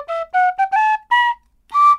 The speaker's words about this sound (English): Oh, it's one of my various instruments that I'm learning while I'm on lockdown. What is it? Tin whistle? It's a penny whistle.